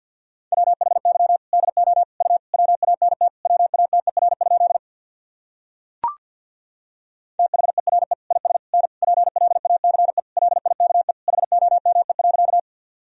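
Rapid Morse code at 50 words per minute sending practice sentences from the top 200 words and abbreviations: a single mid-pitched tone keyed in fast dots and dashes, two long bursts separated by a pause broken by a short click.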